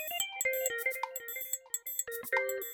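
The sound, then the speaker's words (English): A phone rings with a quick, bright electronic melody of tones that step up and down in pitch, as an outgoing call is placed to a 日米 (Nichibei) instructor, playing clearly on its own with no voices. “I'll just make some phone calls to some 日米 teachers.”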